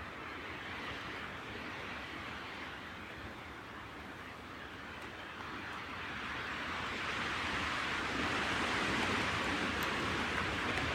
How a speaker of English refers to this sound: Tucked away in my little shelter. It's windy and raining.